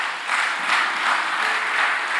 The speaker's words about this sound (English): Only God. Give him a hand clap.